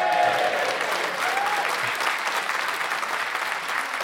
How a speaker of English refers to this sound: It'd been so long since there was a reason for you to clap.